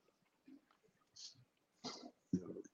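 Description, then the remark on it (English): A dog named Kenny lets out two short, muffled barks close together near the end, going off at a caller, after a stretch of quiet with faint snuffling noises. Nobody speaks. “I was just my dog Kenny go off on this guy that called that show this morning.”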